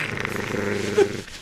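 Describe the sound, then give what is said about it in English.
A dog, Mr. Pickles, growls low and steadily for just over a second, a rumbling snarl that rises slightly near the end before cutting off, with no voices, as it watches a man putting on adult diapers in a bathroom. “Cut to him in the bathroom putting on the adult diapers, and Mr. Pickles is watching him and growling.”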